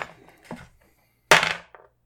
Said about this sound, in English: Let's grab our dice. Let's roll for that.